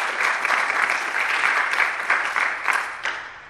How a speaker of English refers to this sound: So before we get to Ms. Tree, let's have some applause.